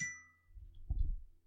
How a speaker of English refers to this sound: Oh. Dare you let your phone ring so jingly on our commercial. That was beautiful.